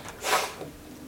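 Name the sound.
sneeze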